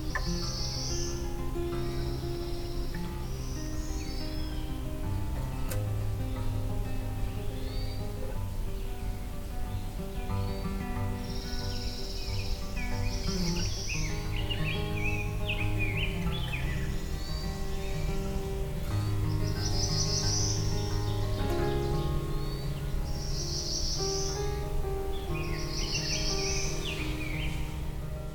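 A Black-throated Blue Warbler sings a sped-up variant of its song, quick buzzy phrases repeated every few seconds over a constant hum of insects and background drone.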